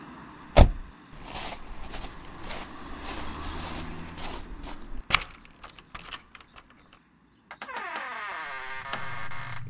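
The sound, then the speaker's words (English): A car door latch clicks sharply as it is pulled by hand and the door swings open, followed by rustling movement as a woman slides down out of the car and a heavier thud as her black leather boots land in a cold puddle, then a steady hum with a rising whine. “She takes a deep breath, pulls the car door latch with her right hand and slides down out of the car.”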